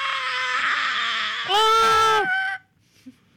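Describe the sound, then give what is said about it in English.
Ear-piercing shrieks from a wild creature at night in a hollow near a town in Tennessee in the 1920s, loud: a long, strained wail that swells into a harsher, even louder second cry, then cuts off abruptly into near silence. “The story goes that almost every night as the family lay down to sleep, they are woken by ear-piercing shrieks.”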